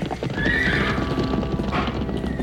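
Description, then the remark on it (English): Tripitaka's horse gallops into the jungle, its hooves drumming in a fast, steady clip-clop rhythm, with a brief high whinny rising over the hoofbeats early on. “Tripitaka's horse galloped at a speed that no mortal mount could match, for his steed was a form of Yulong, the dragon of Eagle Grief Stream.”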